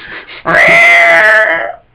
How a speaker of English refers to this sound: Beware of cats. Meow. There's one now.